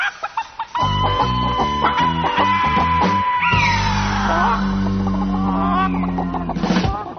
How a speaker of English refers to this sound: Looks like a mass of chickens has scared away the buzzards.